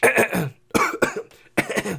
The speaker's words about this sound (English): His incessant throat clearing and coughing. Oh, my God. It's not bad. Every day.